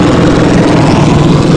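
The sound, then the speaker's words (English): A Life Flight medical helicopter flies in slowly, a loud, steady engine drone with a low humming tone under a broad rushing noise that stays even throughout, with no talking. “Yeah, that's Life Flight coming in slow.”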